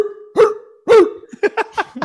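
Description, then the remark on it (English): A person imitates a dog with their voice: two loud, drawn-out barks that slide down in pitch, then a quick run of five shorter, yappy barks. “Wow, that was an amazing dog.”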